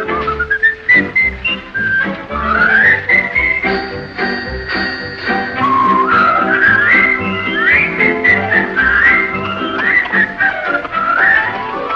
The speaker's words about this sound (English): But I found out, I know it's true, a whistle does much more for you. So I love to whistle, robbers won't come near me, especially when they hear me.